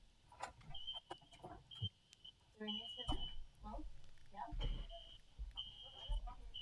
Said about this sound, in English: There's a fire alarm going off in my building right now, of all things.